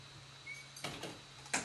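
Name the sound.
door closing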